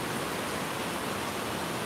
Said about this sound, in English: my goodness, I have not seen rain like this maybe ever in the Pacific Northwest.